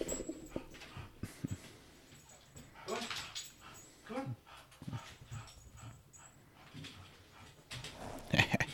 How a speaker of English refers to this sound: Well, hi, dog. You're a pooch. Yeah. Chocolatey eyes. Little pooch. You give a good sniff. Give it a sniff, you dog. Okay, come on.